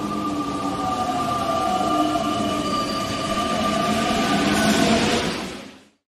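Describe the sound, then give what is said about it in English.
A loud train, used as a transition sound effect, rumbles steadily along the rails, with a high metallic wheel squeal ringing over the roar, then cuts off abruptly near the end. No voices. “If I could find the transition. There it is. All right, we're going to train.”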